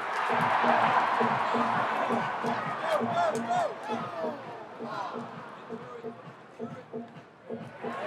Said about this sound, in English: Uh-oh. No, this crowd is getting antsy. We got about 30 seconds left.